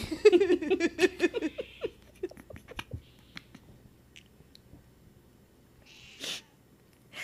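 A single sharp, loud sneeze bursts out near the end, following a stretch of high-pitched, giggly vocal sounds and quieter background noise.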